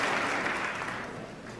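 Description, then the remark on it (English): Sustained applause from members of Congress in Washington, D.C., at a State of the Union address fills the whole clip, a dense steady wash of many hands clapping that stays loud and only tapers slightly toward the end. “They sure know how to applaud an empty suit.”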